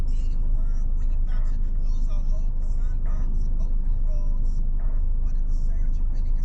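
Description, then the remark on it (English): A bus rumbles past on a road, its loud, steady low engine drone filling the whole moment while faint voices murmur underneath. “Bus? Okay, bus.”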